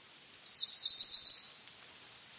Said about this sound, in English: The song of the Cerulean Warbler was once common in the forest of the eastern United States, but today the voice of the warbler is rare. The population of the songbird has declined more than 80% in just 4 decades.